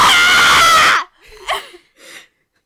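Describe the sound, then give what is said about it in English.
A loud, piercing scream blasts out for about a second, harsh and distorted, then trails off into a couple of quieter, shaky vocal sounds before silence. “You scream so loudly it it's cut so out good.”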